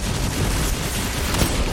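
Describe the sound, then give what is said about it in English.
Dense, loud video game gunfire from hand cannons, with heavy booming shots blurring into a continuous barrage of blasts, and no voices. “Dude, I hate hand cannons.”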